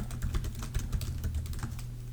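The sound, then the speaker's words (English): Rapid, uneven clatter of keys on a computer keyboard, a steady stream of sharp clicks with a low hum underneath and no voices. “When you type, it sounds like someone pretending to type.”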